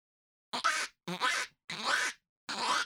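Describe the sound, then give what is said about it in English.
A man's voice does a Donald Duck impression, making four raspy, buzzy quacking bursts in quick succession, fairly loud, with brief silences between them. “Whoa, it's my dad doing a Donald Duck impression.”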